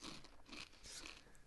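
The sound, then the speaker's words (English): Crisp crunching of chips being chewed, several quick bites in a row with bright crackly bursts, loud, with no talking. “I could literally hear the chip crunches.”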